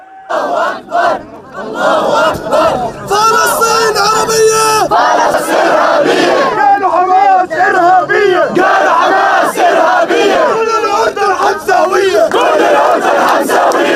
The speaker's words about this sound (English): Jordan is also seeing Islamic protests swarm the Israeli embassy.